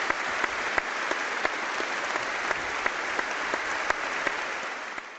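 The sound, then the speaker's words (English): Sustained applause from a large stadium crowd at a football match, a minute's applause in remembrance of loved ones lost in the past year, started on the referee's whistle: a dense, steady wash of clapping with occasional sharper claps standing out, continuing evenly throughout with no voices on top. “We will now have a minute's applause on the referee's whistle.”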